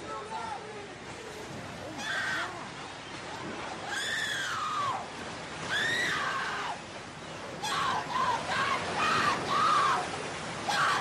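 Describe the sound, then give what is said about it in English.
In a played video of a man being attacked by an orca, his wife screams in several shrill, wavering bursts spaced a couple of seconds apart, loud against a rough, noisy background. “Of somebody who would, I mean, his wife is screaming as that happens.”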